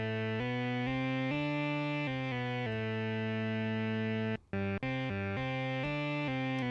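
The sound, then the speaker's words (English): A fat, buzzy square-wave synthesizer tone layered from two oscillators with the octave changed plays a steady run of sustained notes, shifting pitch every half second or so, loud, with a brief break near the end. “It sounds more fat now.”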